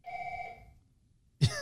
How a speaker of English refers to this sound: I think this phone rings off the hook. And there are people in the building, but nobody wants to answer the phone. And I obviously can't answer the phone, so, hey, you know, anyway.